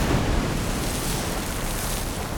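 A gigantic ocean wave cascades over a pier during a storm, a loud, dense, rushing roar of churning water that holds steady for a couple of seconds without fading, overwhelming.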